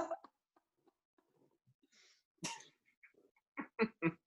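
A single sharp, noisy sneeze bursts out after some quiet rustling, followed a second later by three short, loud vocal bursts in quick succession.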